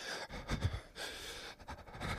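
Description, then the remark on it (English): Someone imitates the nervous, heavy breathing of a person holding a camera: a few loud, airy huffs and gasps drawn in and pushed out, with brief pauses between them and no talking. “You heard dude holding the camera breathing.”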